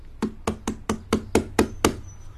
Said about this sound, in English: When he arrived at Cat Cottage, he knocked on the door. He banged on the windows.